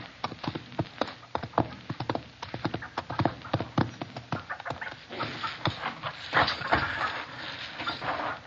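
Horse hooves clip-clop in a steady, uneven rhythm of sharp knocks, with a rustling outdoor background and no talking.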